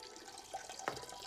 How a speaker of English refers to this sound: He looks back to the plant, pee still ongoing.